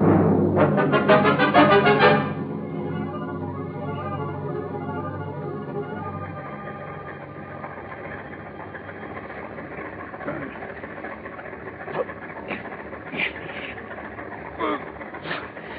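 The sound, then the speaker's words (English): A car engine roars to life with a loud burst inside a closed garage, then settles into a steady, droning idle, with a few faint clicks and knocks over the running motor, its exhaust gas filling the garage. “You just lock him in this closed garage to breathe the gas. Tonight, when it's dark, we get rid of their bodies in their car. Start the motor.”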